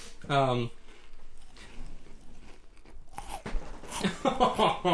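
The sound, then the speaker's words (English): Crunchy chewing of cookies by several people who move away from their mics to chew, in uneven bursts of loud mouth noise, with a short vocal sound near the start and voices murmuring toward the end. “Everybody's moving away from their mics to chew.”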